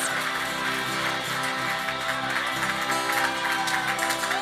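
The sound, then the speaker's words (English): Steady applause at a church evening gathering as a speaker comes up, a dense, even wash of clapping at moderate loudness, blending with held musical chords that sustain underneath throughout. “Give him a round of applause, why don't you?”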